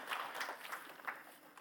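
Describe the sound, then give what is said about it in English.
A crowd at a morning worship service claps steadily, many hands producing a dense, crackling patter with a few sharper accents, moderately loud and without any voices over it. “Oh, yeah, we can clap.”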